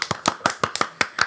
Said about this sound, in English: Excited to edit those claps. So excited.